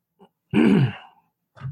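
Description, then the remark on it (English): A loud throat-clearing cough, one rough guttural burst lasting about half a second, framed by a small vocal sound before it and another brief one right after. “Yeah, I'm coughing, everybody.”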